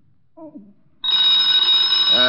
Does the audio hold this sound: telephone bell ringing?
yes